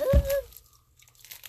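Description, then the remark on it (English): Someone chews a soft cream-filled chocolate, with a short thump and a brief hummed sound at the start, then faint, wet mouth noises. “It's not bad. Keep chewing.”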